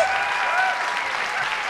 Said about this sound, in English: Thank you for that warm round of applause.